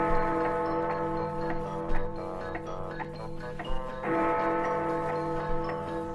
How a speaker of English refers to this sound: But this was the biggest clock he had ever seen. He got into a boat for a closer look. As he sailed past the clock face, he heard the chimes telling the hour.